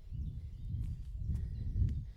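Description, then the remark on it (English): A few steady footsteps of a person walking during a run-walk workout land at an unhurried pace outdoors, soft thuds over a low rumbling background, with faint bird chirps. “Hear my footsteps change when I'm running and walking.”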